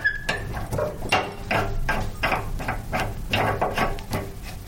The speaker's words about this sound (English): I'm opening the tap, but there's no water coming out. None water, not even a little bit. No, no water. Because the water's been cut off, the meters has been removed.